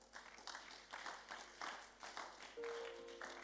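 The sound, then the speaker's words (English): The women of an audience clap together in a steady rhythm, a soft wash of many hands beating roughly twice a second, with a brief sustained tone joining near the end. “The way you are clapping, the women, you know, you don't believe the word.”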